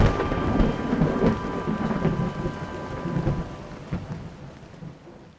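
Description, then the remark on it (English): A thunderstorm with steady falling rain, a dense hiss of drops layered over deep rolling thunder rumbles that swell and fade, fairly loud, with no voices. “After Noah's family got in, God shut the door tight as the first raindrops began to fall.”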